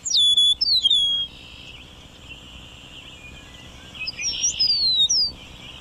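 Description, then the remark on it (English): An eastern meadowlark sings clear, slurred whistled phrases that descend sweetly, one near the start and another after a pause about four seconds in, ringing over a quiet open-field background with no talking. “He was looking at an eastern meadowlark.”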